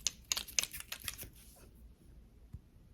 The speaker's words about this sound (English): I'm gonna roll the dice and see what you're gonna get. How many points of healing you're gonna get? Okay, I'm just gonna make sure. So, I'm just gonna roll it. Roll the dice.